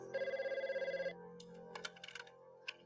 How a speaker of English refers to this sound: I was just getting ready for bed. The phone rang at home,